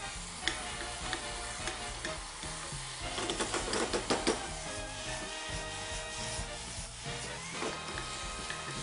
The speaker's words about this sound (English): Now this is ready to get some liquid in there. And we're going to go a little at a time, just so it has a chance to really steam this baby and cook these potatoes where we need them to go.